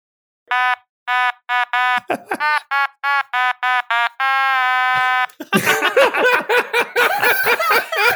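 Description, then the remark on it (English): A funeral dirge played on a Kirby toy automaton: a string of short, buzzy, reedy notes at a steady pace ends in one long held tone, then people burst into loud laughter. “playing a funeral dirge after last week's TPK”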